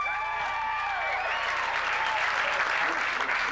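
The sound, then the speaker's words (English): A comedy show audience, the single people answering the comedian's question by applause, breaks into steady applause with some whoops and cheers mixed in, a dense, continuous wash of clapping that stays loud for the whole few seconds. “Single people have so much hope. They always cheer.”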